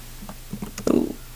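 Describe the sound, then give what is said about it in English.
A short run of quick, light clicks on a computer keyboard taps out at an uneven pace, ending with a duller, heavier thump, fairly quiet. “Type more aggressively. The keyboard ASMR is really doing it.”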